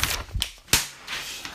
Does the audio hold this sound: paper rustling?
yes